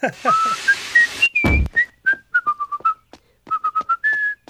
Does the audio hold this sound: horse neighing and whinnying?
no